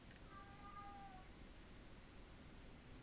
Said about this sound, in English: Ah, oh, the cat's back, meowing.